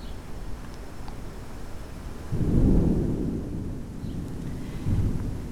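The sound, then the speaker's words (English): Low thunder coming from the west rolls in a broad swell midway through, with a softer rumble near the end, over a steady hiss of wind moving through leaves, heard from a street just before a summer storm. “You can hear the thunder. It's coming from the west. Some wind is running before it and moving through all the leaves.”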